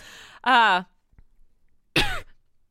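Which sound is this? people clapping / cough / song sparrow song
cough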